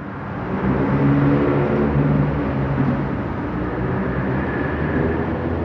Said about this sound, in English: Normally that noise from that traffic would have probably been overwhelming. I didn't even pay attention to it.